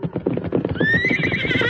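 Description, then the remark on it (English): A saddled horse carrying a hurt rider hanging onto the saddle pommel whinnies loudly, its high wavering call rising over a steady clatter of hooves clip-clopping along. “He's hanging onto the pommel of his saddle.”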